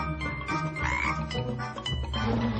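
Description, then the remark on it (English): Frogs croak in a dense, continuous chorus, the overlapping calls fairly loud, with no speech over them. “The monster's addicted to frogs.”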